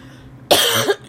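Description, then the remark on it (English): A single forceful cough lasting about half a second, harsh and breathy, followed by the abrupt start of another cough at the very end. “So y'all gonna hear the cackling, the coughing, the clearing my throat.”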